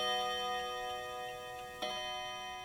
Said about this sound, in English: We sat quietly in the ornate room, sipping our root beer under the eyeless watch of the porcelain figures, listening to the chimes as the room fell otherwise silent.